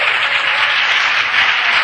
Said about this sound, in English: Woo, clap your hands, all you people.